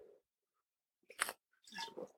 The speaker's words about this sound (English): I'm going to take another swig of my lingonberry wine.